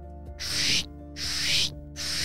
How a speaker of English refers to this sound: The sound of the scratching of his claws could be heard around. Everybody knew that sound and knew what it meant. It was fishing time.